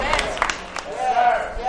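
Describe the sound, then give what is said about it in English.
A few thin, scattered hand claps from a church audience during a sermon, sparse and uneven rather than full applause, over a low crowd murmur with a voice sounding faintly underneath. “Ooh, the hand claps is thin and out.”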